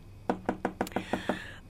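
Seven quick, evenly spaced knocks on an office door, rapping in a steady rhythm with no voices present.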